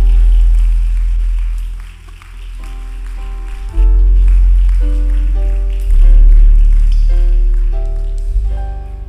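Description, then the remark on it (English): An audience claps in a steady wash of applause for the Lord's servant while sustained keyboard chords and a deep bass line step through changes underneath, fairly loud throughout. “How about a greater clap for the Lord's servant?”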